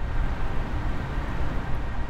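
Traffic on a motorway running alongside a cemetery produces a steady, unbroken roar, heavy in low rumble with a broad hiss above, as cars rush past in a constant flow with no single vehicle standing out and no voices.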